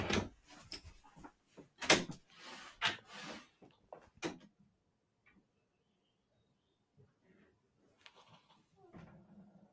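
A burst of clunks and rattles, like a door being handled and shut as someone answers the door to a visitor, fills the first few seconds, then things go quiet apart from a few faint knocks near the end.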